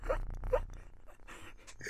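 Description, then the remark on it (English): A cat named Amy purrs into the microphone, a steady low rumble that runs throughout, broken by a couple of brief breathy pulses near the start and scattered soft rustles. “Everybody, this is Amy purring into the microphone.”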